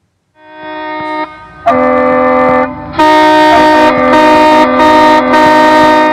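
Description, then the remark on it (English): Loud horns of trucks on a highway right nearby blare in long, sustained, buzzy tones that stack and shift pitch over several seconds, with harsh noisy bursts joining toward the end; no one speaks. “It's just trucks. I'm right near the highway. It's like you can't even get we still talk about.”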